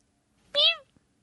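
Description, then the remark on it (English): A single short cat meow, fairly loud, with a bright rising-then-falling tone lasting about a third of a second, followed by a faint click in otherwise quiet surroundings. “Not meow”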